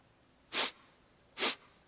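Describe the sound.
A voice imitates a lion sniffing the air: two sharp, breathy sniffs, evenly spaced about a second apart, fairly loud with quiet between them.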